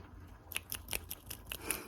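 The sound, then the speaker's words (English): Fingers snap in a quick, steady run, about seven crisp, sharp clicks evenly spaced after a brief quiet start. The snaps are fairly soft, with no voices. “Good, it's snapping again.”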